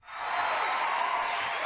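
A steady wash of crowd cheering swells up quickly and holds at a constant level, a dense hiss of many voices and noise with no distinct words.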